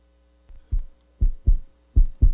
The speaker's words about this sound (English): A nervous heartbeat, perhaps?